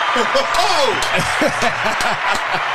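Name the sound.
applause sound effect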